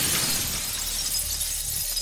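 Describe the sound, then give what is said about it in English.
A key swung at a stone wall shatters against it in a bright, brittle burst, followed by a sustained shower of fine tinkling fragments for about two seconds, loud with no voices. “You swing it at the wall, the shaft of the key shattering against it.”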